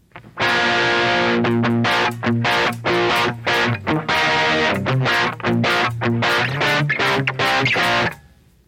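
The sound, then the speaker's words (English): An electric guitar on the distortion setting plays a run of chords and riffs through a crunchy overdriven distortion tone, loud, with rhythmic strummed bursts and brief pauses, ringing out at the end. “The next setting is called distortion. So overdrive. And you hear distortion.”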